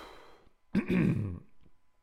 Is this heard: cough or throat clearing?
yes